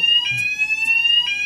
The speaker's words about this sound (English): I'm a bit sick of this fucking fire alarm. Yeah, I am. I need to smash the fucking thing up. Seriously, we could really do with this fire alarm stopping sometime soon.